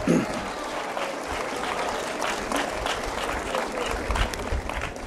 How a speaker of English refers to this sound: Welcome aboard the flight deck of the USS Midway. Go ahead, give yourself a round of applause. You deserve it.